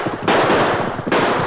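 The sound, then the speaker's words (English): A rapid burst of gunfire in a radio drama shootout crackles in two loud, dense volleys, shots overlapping into a harsh rattling roar, with a brief dip between them and no voices. “You're shooting wild, Dorgan.”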